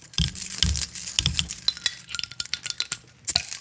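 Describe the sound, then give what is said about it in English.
A bottle of Lagunitas Dark Swan Sour Ale (7.9% alcohol, One Hitter series) being opened: a busy run of sharp metallic clicks, scrapes and glassy clinks for a few seconds, with a brief pause near the end before a final rattle. No voices. “Crack her open real quick.”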